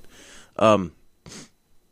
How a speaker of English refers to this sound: That phlegm I've been trying to cough up the whole time. Oh, my God. Must you? That half cigarette did it.